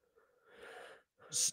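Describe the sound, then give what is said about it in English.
A noisy breath rushes into the microphone, followed after a brief pause by a sharper, hissy exhale or snort-like puff. No talking, just airy breathing into the mic. “I was just breathing.”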